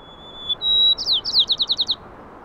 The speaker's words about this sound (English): The white-crowned sparrow is clearly singing much louder in the second clip, and I'm guessing that is from the lockdown because the traffic is far quieter.